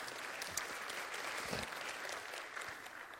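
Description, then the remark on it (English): A room full of people claps together in steady, dense applause that holds at an even level throughout, a continuous patter of many hands without any voices rising above it. “He didn't fight his way to get there, but he was God's choice, and we should applaud David for getting the appointment right. In service to future, if one person claps, we all have to.”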